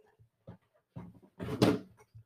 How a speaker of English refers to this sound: You guys hear my creaky ass chair?